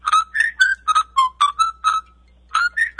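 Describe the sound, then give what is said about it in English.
Someone whistles an imitation of a bird's song, a quick run of about ten short, chirpy notes that rise and dip, then a brief pause before a few more. No talking. “I hung up the phone, and right out my window, a beautiful bird sang this song.”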